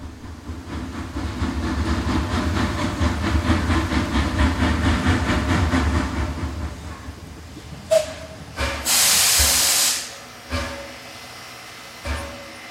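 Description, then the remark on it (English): A steam train at Settle station rumbles with a steady rhythmic chugging, then goes quiet before loud bursts of hissing steam erupt, one long blast followed by a few shorter sharp releases. “Train at Settle.”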